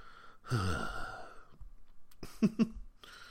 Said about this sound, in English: God, excuse me. I haven't coughed all day, and then I started doing the show, and my throat dries up.